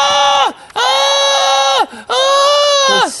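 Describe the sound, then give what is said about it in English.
A person lets out three loud, drawn-out fake screams with no talking: one short, then two long ones held steady before each sags downward at the end, almost bleat-like. “Stop it with your fake screaming.”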